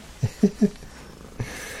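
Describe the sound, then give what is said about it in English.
An energetic, excited male cat lets out three quick, clipped chirping meows in a rapid burst, then one softer chirp after a short pause, with no one talking. “No, he's very energetic. He's and, a frisky kitty again.”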